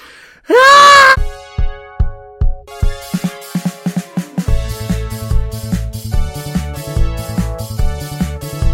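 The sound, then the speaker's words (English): A single loud, shrill human morning scream rises and then falls in pitch for under a second, followed immediately by a rhythmic plucked melody that builds into a fuller upbeat music track. “Right then, time for my morning scream.”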